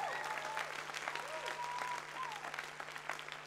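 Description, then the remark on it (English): An audience gives God a clap of praise one morning at the start of 2017: a dense wash of many hands applauding together at a fairly even level, with faint tonal voices or whoops rising above it and a low steady hum underneath. “Come on, if you're thankful to God, how about giving Him a clap of praise this morning?”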